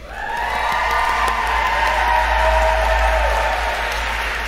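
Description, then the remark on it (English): A crowd claps steadily for several seconds in a full worship space at a Duke Divinity Pride worship service, a dense wash of applause with scattered cheers and whoops rising over it, holding loud throughout without pause. “Applause. Unbelievable.”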